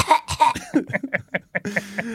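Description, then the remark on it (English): A rapid, fitful run of about a dozen dry, hacking coughs from a person in a dusty place, fairly loud, with a low steady hum coming in under the last few. “And there's lots of dust, and I'm coughing.”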